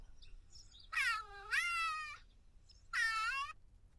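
A cat meows twice: a long, drawn-out meow that rises in pitch midway, then a shorter one after a brief pause. Both are loud against a faint low hum, with no talking; it is a TikTok sound played on a phone, meant to make a cat come cuddle.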